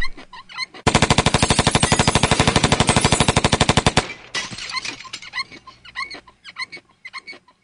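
A drive-by shooting: a loud, rapid burst of automatic gunfire rattles steadily for about three seconds, then cuts off into a jumble of scattered, irregular yelps and clatter.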